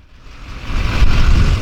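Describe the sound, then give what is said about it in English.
A truck's engine rumbles low and steady, growing louder over a second or so as the vehicle pulls up to a donation tent in front of Cottage Hospital in Santa Barbara, with no voices. “pulls his truck up to a donation tent in front of Santa Barbara's Cottage Hospital.”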